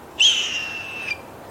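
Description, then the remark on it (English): A jay mimics a hawk's call: one loud, drawn-out, high-pitched scream that slides slightly downward for about a second, then stops, with no other sounds around it. “And if that doesn't work, the jay may mimic the call of a bald eagle or red-tailed hawk, birds at the very top of the pecking order, to dissuade the invader.”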